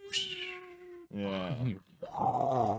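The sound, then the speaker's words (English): A person imitates a loud jet plane with three strained vocal bursts: a steady whine, then a wavering roar that bends up and down in pitch, all loud and without words. “How loud are you, brother man? Jet plane.”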